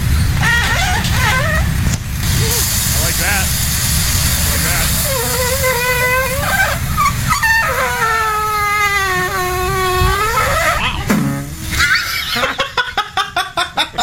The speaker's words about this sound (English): The end of that is the best part, right? Where it's squeaking, squeaking, squeaking, then just goes bong, bong, bong. Again, the video called Waffle Poots, somebody recording their waffle maker as it makes squeaky toot noises.